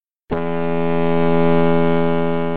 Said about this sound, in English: And that, Peacekeepers, is the foghorn from the Souter Lighthouse in South Shields.